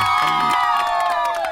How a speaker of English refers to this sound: We need to cheer something on that.